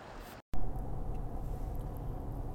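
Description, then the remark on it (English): Steady low rumble of road and engine noise from inside a car driving home after a day of fishing, constant and fairly loud after a brief silent gap at the start, with no one speaking. “Hello, I am in the car and I'm on my way home.”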